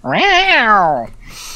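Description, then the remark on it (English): A single drawn-out meow, about a second long, rising then falling in pitch, voiced by a person imitating a cat, loud, followed by a brief breathy trailing sound. “It's just a cat.”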